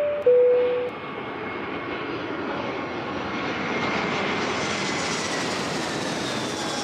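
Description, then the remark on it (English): A private jet's engines roar in a steady, broad whoosh heard from inside the jet during a flight to the Bahamas, growing slightly brighter over several seconds, after a brief electronic tone at the start. No one speaks. “What did I have to lose by flying on a private jet to the Bahamas”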